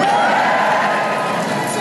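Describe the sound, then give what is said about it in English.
An audience cheers loudly and steadily for about two seconds when asked to cheer if they have a belly, a dense wash of shouts and whoops with no break or lull. “Give us a cheer if you've got a belly.”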